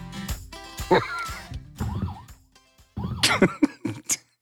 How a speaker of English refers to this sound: What is that? Did I just hear sirens? I may have hit a toy.